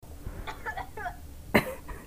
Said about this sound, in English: Okay, we're recording, I guess. Starting with that cough.